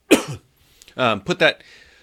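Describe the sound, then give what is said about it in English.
A sharp cough bursts out, followed after a short pause by two rougher, throaty hacks in quick succession, with no talking around them. “got a cough.”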